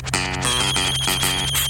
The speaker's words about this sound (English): Then you hear the phone call. Hold on, hold on. Let me get the phone. Hold on.